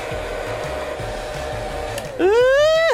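A steady hair dryer blows with a low rumbling hum, drying someone off after a bath, then its motor jumps to a louder, high-pitched whine for the final second before briefly dipping.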